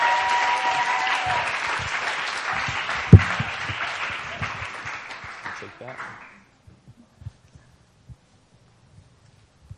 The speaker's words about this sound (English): So let's welcome her up with some applause.